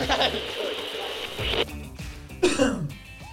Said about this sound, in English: Clear the old throat. No better way to do it than a good old cough in COVID times. Right into the microphone. Whack. Yeah. Get that into you.